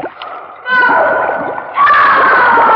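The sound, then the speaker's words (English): Loud splashing and churning water as a woman who has jumped into the water thrashes about, with strained voices crying out over the commotion. “Woman, why did you jump in the water?”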